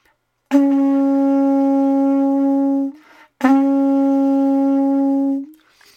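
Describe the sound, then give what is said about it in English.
An ancient conch shell horn is blown in two long, steady blasts, each a loud, low, brassy drone rich in overtones, separated by a brief breath-like pause, with no talking. “And even more so if I put some reverb on it, because these things would have been played outdoors in caves or in dwellings where you would have this perhaps natural resonance of the space as well as the shell.”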